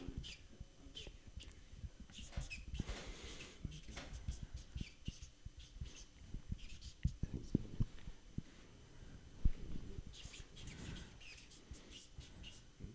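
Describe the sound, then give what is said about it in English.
Quiet scratching of a pen writing an answer on paper during a guessing game, in short irregular strokes, with faint whispering and soft rustles in the background. “Write down in the paper.”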